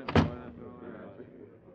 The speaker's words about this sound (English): Close the door, will you?